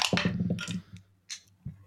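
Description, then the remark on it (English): Force dice rattle and clatter across a hard surface in a quick burst of clicks during a tabletop role-playing game, followed by a couple of separate sharp taps as they settle. “Do we want to do force and the force dice first?”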